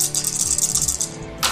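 Dice for a Persuasion check, a green and two yellows, rattle and clatter across a hard surface in a quick burst of sharp, rapid clicks, loud and without any voices, ending with a final brighter clack.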